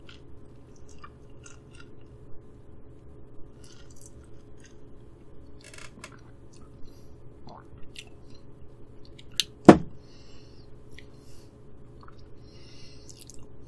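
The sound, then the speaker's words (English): Quiet sipping of root beer from a glass over crushed ice, with soft slurps and faint scattered ice clicks, then one sharp, bright clink of ice against the glass near the end. “Let's take a sip.”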